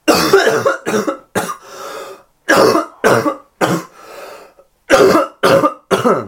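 A person coughs violently and repeatedly, harsh hacking bursts coming in quick clusters with brief wheezy pauses between them, loud with no talking.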